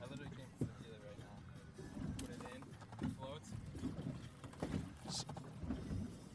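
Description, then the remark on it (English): A boat rumbles on a lake as it pulls alongside and links up with another boat, with a steady low churn, a few hollow knocks against the hull, and muffled voices talking underneath. “Yeah, boat number three just linked up with us.”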